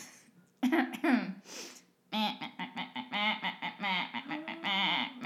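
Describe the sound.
A person voices a soft series of nasal quacking murmurs, short choppy bursts in quick succession that imitate a duck muttering, with a brief pause partway through.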